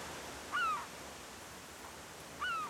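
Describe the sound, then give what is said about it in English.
Two distant seagull cries at the beach, a couple of seconds apart, each a short harmonic squawk rising above a steady wash of soft surf-like noise from crashing ocean waves. No one speaks. “That's it, hearing the seagulls in the distance, the waves crashing.”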